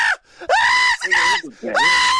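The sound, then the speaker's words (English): A voice imitates children screaming in excitement while playing Pac-Man on an Xbox: three loud, high-pitched shrieks in quick succession, piercing, with brief breaths between them and no other talk. “I've never heard anybody scream so much.”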